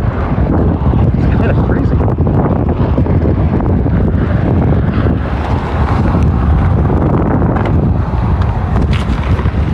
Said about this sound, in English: It's so windy now.